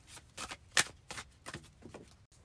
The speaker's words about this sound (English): To help guide us in stretching to the edge of comfort, let's use our soul coaching oracle deck and let the universe choose a card for us. So I'm going to start shuffling.